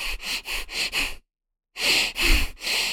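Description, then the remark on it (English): Rapid, forceful breath-of-fire breathing demonstration, breathing in and out deeply and rapidly: a quick run of sharp rhythmic breaths, a brief silent pause, then three more heavy, deep breaths. No talking. “But, you know, there's many names for chaotic breathing, breath of fire, but breathing in deeply and out deeply, rapidly.”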